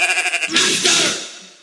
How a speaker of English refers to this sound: If you saw don't … just go, and now here's a sheep that I'm gonna fuck.